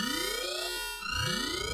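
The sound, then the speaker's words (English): An elevator alarm blares on its own, a loud electronic tone sweeping upward in repeated whoops, about two rising cycles with a steady buzzing layer underneath and no voices. “What if I hit the elevator alarm?”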